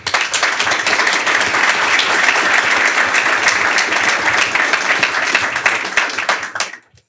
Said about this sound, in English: So give these guys a round of applause.